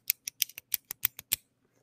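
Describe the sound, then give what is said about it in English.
About ten crisp mouth clicks in a quick, slightly uneven run, quiet and intimate like ASMR, then a moment of silence. No one speaks. “RK, you need more clicking sounds. See, I got the clicking sounds. I can do the clicking sounds.”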